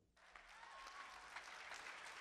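An audience bursts into applause, a dense, steady wash of many hands clapping that starts abruptly and holds at a fairly loud level throughout.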